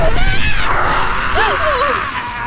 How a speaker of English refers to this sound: You hear that? You can scream at us all you want. You can gnash your teeth.